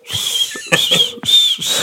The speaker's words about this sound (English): You're fucking with me right now, aren't you? You fucking whistling bitch.